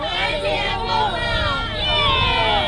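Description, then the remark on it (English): A large crowd on Shanghai's Bund Riverside shouts and cheers together as the clock strikes midnight, marking the end of COVID lockdown. A loud, steady roar of many overlapping voices rises and falls in pitch throughout. “Those who gathered on the city's Bund Riverside to mark the occasion shouted in unison when the clock struck 12, with some clinking champagne glasses.”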